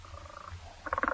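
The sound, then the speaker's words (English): A rapid burst of buzzy, pulsing croaks with a mechanical, robotic edge, like an electronic frog, rising briefly over a steady low rumble. No one speaks. “What in the world is that sound? A robot frog?”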